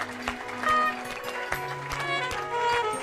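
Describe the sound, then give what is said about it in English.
An audience claps hands unto Jesus in a steady rhythm, the sharp beats recurring about every half second over loud, lively music with bass and sustained melodic tones. “Put your two hands together for Jesus.”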